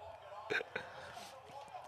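A quick, stifled sneeze comes in two short, sharp bursts close together, fairly soft, with a low murmur of background noise around it.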